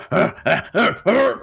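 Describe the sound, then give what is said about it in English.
A voice imitates the grunts of Giant Ape Stanley as he runs, leaps and lands on top of a car in a tabletop game: four loud, throaty, voiced bursts in quick, even succession, each swelling and dropping in pitch, with no words spoken. “He definitely makes under. A sound when he leaps, right?”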